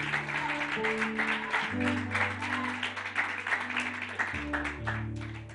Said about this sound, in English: Come on, let's give Jesus a great big hand clap of praise. Let's give him a hand clap of praise. Come on, let's make a joyful noise.